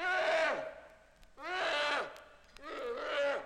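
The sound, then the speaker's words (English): Harry Shutup, a noisy little Eurasian brown bear cub lost from its mother, calls three times, each cry a loud, harmonic, bleating wail about half a second long that bends downward in pitch at the end, with short pauses between. “This voice, however, belongs to Harry Shutup, the noisy little Eurasian brown bear cub who's always getting lost from mother.”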